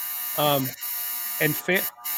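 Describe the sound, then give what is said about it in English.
A clothes dryer buzzer sounds off as clothes are being dried: one longer harsh buzz followed by two shorter ones in quick succession, fairly loud, over a low steady background hum. “That is my dryer going off because Carol's washing and drying clothes.”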